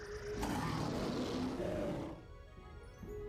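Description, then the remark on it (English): A loud, harsh robotic roar of the Red Lion bursts out, rumbling for under two seconds before trailing off into a quieter growling tail. “The Red Lion is calling me.”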